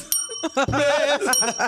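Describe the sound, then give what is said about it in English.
A small, bright bell rings out twice, its clear tone lingering, while voices chuckle and laugh. “Like, give me some more bell in my.”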